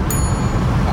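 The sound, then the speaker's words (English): A single bright ding of a small hand bell, struck once as a loaded Rivian pickup of about 8,000 pounds reaches 60, a thin ringing tone that lingers and fades, over a steady low rumble of road noise inside the moving vehicle. “How about I will ring the bell when it hits 60.”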